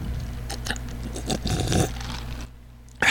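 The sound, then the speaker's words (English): Wet chewing of a sandwich bite with soft crunchy smacks and scrapes, continuing steadily for a few seconds, then a brief near-silence before a sharp noise at the end. “Somebody eating a sandwich and drinking a drink.”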